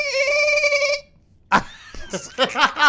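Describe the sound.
A man imitates dolphin mating noises with a high, steady, warbling trill lasting about a second. A short pause follows, then a sharp burst and animated voices.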